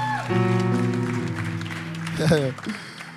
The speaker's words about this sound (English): Clap your hands and celebrate Jesus.